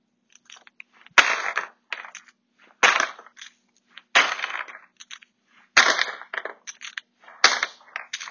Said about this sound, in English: Let me scan these tubes real quick. Okay. Loud crashing in the background, I'm adding them to a bin.